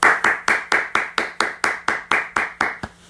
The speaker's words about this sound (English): If you didn't clap, that I'm clapping for you, because at this point you guys made it.